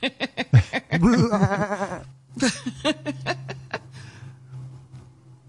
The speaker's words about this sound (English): That's a goat. That ain't a lamb.